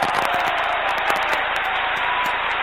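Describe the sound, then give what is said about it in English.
A dense, steady wash of audience applause at the end of a WrestleTalk interview, many hands clapping at once in a continuous crackling roar that holds an even loudness throughout, with no voices. “can we get a round of applause from the audience, please?”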